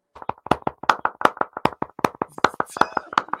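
Hands clap in a quick, steady run of sharp claps, fairly loud, with a slightly uneven rhythm and room echo; no one speaks.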